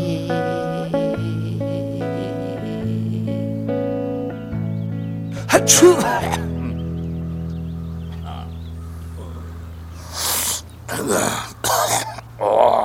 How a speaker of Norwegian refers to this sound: Nå har jeg snytt meg så jeg helt rød og sår på nesa. Jeg har prøvd alt for å åpne opp denne tette nesa mi.